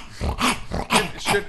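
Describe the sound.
A voice imitates a snarling, growling dog slathering at a car's roof, with about four rough, rhythmic bursts of guttural noise in quick succession and no words spoken.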